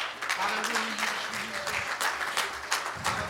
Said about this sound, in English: Jesus is stronger than anybody else. I wish you'd clap your hand.